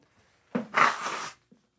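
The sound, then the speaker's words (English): One forceful nose blow: a rough, hissing burst under a second long with a brief honking whistle in the middle, then quiet with a tiny sniff at the end. “And as a word from our non-existent sponsors, while I blow my nose.”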